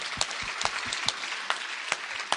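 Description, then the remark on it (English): An audience claps steadily, a dense wash of overlapping handclaps with a few sharper, louder claps standing out. No one speaks over it. “Yes, you can give it a hand of applause.”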